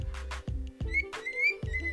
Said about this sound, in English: He is a cockatiel, and he's been living with me for 11 years now. I got him when I was 8 years old, and because I used to be really creative and original, I decided to name him Ocho, which means 8.